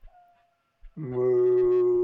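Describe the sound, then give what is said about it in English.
A rooster crows loudly, one long, harsh, sustained call that starts about halfway through after a nearly silent opening and runs to the end. “I heard Ralph trying to answer, but unfortunately, yes, it's hard to say moo when you're a rooster”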